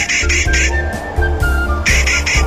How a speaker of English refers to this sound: The Clark's Nutcracker, Nucifraga columbiana. Today's Talkin' Birds featured feathered friend.